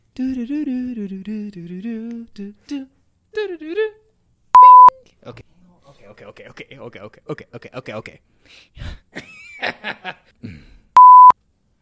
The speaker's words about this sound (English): You don't have to do the beep because I'm going to do that in editing.